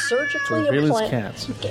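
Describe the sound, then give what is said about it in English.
A cat meows loudly, a couple of drawn-out, wavering meows running together over less than two seconds, with a thin steady tone faintly underneath at the start. “They would, they decided, deploy surveillance cats.”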